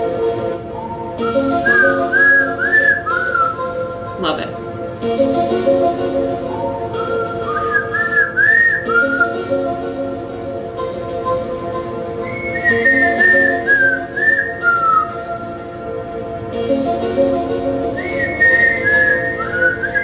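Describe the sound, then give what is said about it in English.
A person whistles a TV show's opening theme song, a lively, bouncing melody in repeated phrases, loud, over a steady musical backing, with a brief spoken comment near the middle. “I'm not good at whistling, but you get the point.”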